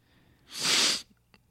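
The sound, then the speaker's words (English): A single loud sniff, a short noisy rush of air drawn in through the nose, with quiet around it and no talking. “You're sniffing. You probably do have COVID.”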